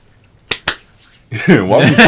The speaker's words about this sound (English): Why the fuck we clap?